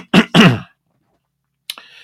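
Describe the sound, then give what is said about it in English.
A loud double throat-clear: two rough, gravelly coughing bursts in quick succession, then a pause of silence and a short, faint rasp at the end. “Scratchy throat, sore throat, a cough, whatever it may be, we're going to stay before the throne of grace, and we're going to pray for all these requests.”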